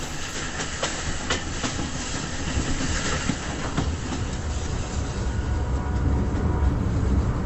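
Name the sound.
train clattering along rails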